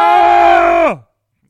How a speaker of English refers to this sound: Today's secret word is Baron. Every time we say Baron, we scream.